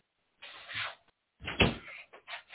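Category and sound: household object, door being shut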